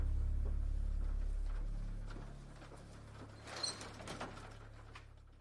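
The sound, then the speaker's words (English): A door to the daycare opens and shuts with a few sharp clunks and clicks, heard over a steady low mechanical hum with no one talking. “She didn't seem to notice Freddy as she continued down the hallway, eventually leaving Freddy's field of view, the sound that shut a door to the daycare opening and closing soon after.”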